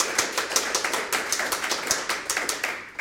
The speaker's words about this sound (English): I'm not going to judge you too much, but give him a round of applause for the smaller questions.